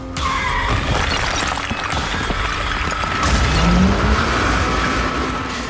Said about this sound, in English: But all that changed the moment the road ahead went up in a flash of scream and smoke and debris.